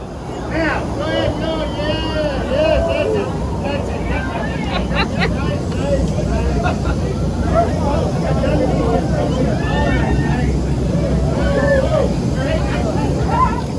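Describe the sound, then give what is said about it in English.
A loud, steady roar of aircraft cabin noise fills the whole stretch as the plane dips its nose into a weightless parabola on a Zero G flight from Kennedy Space Center's shuttle landing facility, with several people's excited voices, squeals and giggles rising and falling over it as they float in the empty padded fuselage. “The pilot dipped the plane's nose down. We were weightless.”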